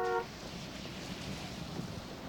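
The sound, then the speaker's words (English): A single short car horn honk sounds at the very start, then quickly gives way to a steady rumble of road and traffic noise with no talking. “I'm like, why would you honk at them like they didn't obviously pull?”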